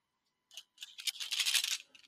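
Dice clatter and tumble across a hard table in a quick burst of bright, rattling clicks, settling after about a second and a half, with no voices.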